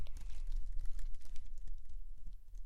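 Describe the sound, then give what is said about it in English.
Rapid, irregular clicking of keys on a computer keyboard, continuing steadily over a low background hum with no voices. “This is a keyboard you use, and you can play some.”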